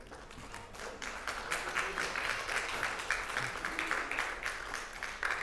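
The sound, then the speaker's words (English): An audience applauds steadily throughout, a dense wash of many hands clapping at a fairly even, moderate loudness with no voices standing out. “I didn't want to even want you guys to clap, but I didn't read this for that.”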